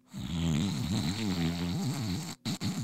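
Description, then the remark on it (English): A long, loud, rumbling snore drones for about two seconds with a wavering, buzzing pitch, then breaks off into a couple of shorter snorting breaths. No one talks over it. “People don't usually snore the split second they fall asleep, which means you were sleeping at least a minute before the snoring started.”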